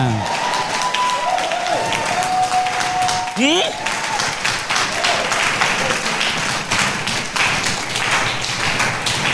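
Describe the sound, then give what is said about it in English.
A large church audience claps steadily and continuously, a dense patter of many hands that never lets up, with some voices and a brief whistling tone mixed in near the start. “Those who are clapping, may the Lord multiply your blessings.”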